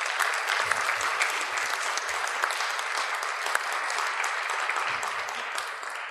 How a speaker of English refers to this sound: So we're going to have a narrator over here, and we're going to have the shepherds over here. So please give them a warm round of applause as they come on up here, folks.